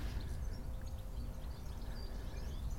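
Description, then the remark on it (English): Faint, scattered twittering of a group of goldfinches, light high chirps coming and going over a steady low rumble of outdoor background noise. “And all this twitter and tweeting is actually goldfinches.”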